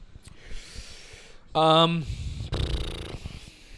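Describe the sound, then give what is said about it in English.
Someone makes two loud, raspy snoring noises right into the microphone, a short buzzy snort followed by a longer rattling snore, imitated by voice over faint background hiss. “Ooh, just snoring in the mic.”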